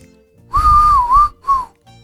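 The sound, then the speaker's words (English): A person whistles a short TV theme tune, fairly loud: one longer phrase with a gentle pitch dip, then a brief second note, with no talking. “That's actually the best whistle I've ever done.”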